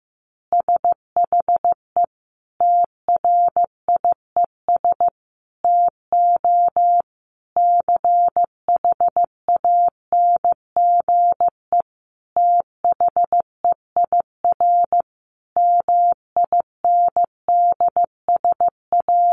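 A single mid-pitched Morse code tone keys on and off in crisp dots and dashes at a steady, moderate pace of about 15 words per minute, spelling out easy phrases, with short gaps between words and no voices.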